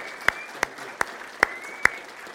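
Five sharp, evenly spaced hand claps ring out at a slow steady beat over a faint, continuous high-pitched hum, with no voices heard.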